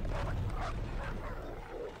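A dog barks in a series of short, repeated yaps with brief whimpering tones, fairly quiet over a steady low background rumble.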